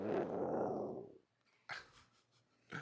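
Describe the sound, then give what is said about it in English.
A dog growls low and steadily for about a second, then two short, breathy rumbles follow after a pause, with no talking. “Little hippies growl.”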